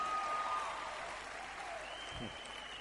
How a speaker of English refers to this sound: The good ones are clapping. Those who understand are clapping.